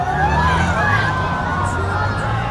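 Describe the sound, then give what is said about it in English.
A large crowd screams and cries out together as the spire of Notre Dame cathedral in Paris collapses during the fire at night, a dense, sustained clamor of many raised voices with a rumbling low background, loud and continuous throughout. “I remember the scream of the crowd saying, no, as if they couldn't conceive such a thing.”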